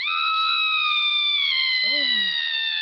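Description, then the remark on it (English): A loud, extended scream from a wrestling match on SmackDown holds one shrill pitch for about three seconds, sagging slightly lower as it goes, while another voice briefly cuts in underneath near the end. “It was a scream. An extended scream.”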